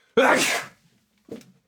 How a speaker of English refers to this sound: Sneeze.